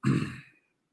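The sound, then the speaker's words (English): A single short, guttural burp, a low rumbling belch lasting about half a second and fading out, with no talking around it. “The beer is what where the burps come from.”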